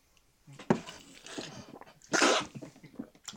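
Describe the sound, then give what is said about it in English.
Someone splutters and coughs after choking on tea: a sharp burst, then ragged, wheezy gasps building to one louder, harsh explosive cough, followed by smaller sputters. “That was the wrong moment to take a sip of tea.”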